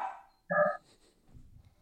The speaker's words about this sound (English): Apologies for that. Did we all hear the dog there? Yeah. He agrees.